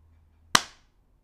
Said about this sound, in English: I'm not recording my Audio. That's okay. I'm gonna clap.